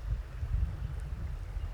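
River water flowing steadily past, a continuous wash with a heavy low rumble underneath and a soft even hiss above, unbroken and without any voices.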